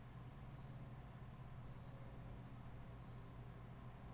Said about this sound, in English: Why are we hearing crickets in the middle of the morning? Do you hear that? I do.